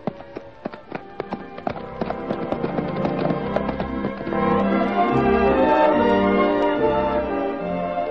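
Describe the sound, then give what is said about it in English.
Horses galloping hard as riders race to the top of a hill, with sharp, rapid hoofbeats clattering in a quick irregular rhythm that swells into a louder, denser pounding rush as the race builds. Nobody speaks. “Race you to the top of the hill. Oh, just you try. Horse racing's right in my blood.”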